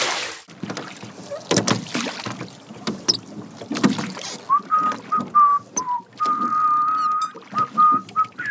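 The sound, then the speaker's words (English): A small boat is shoved into canal water with a series of hollow knocks, scrapes and splashes, then someone starts whistling a wavering tune over the lapping. “I guess I best get this boat in the canal and get going.”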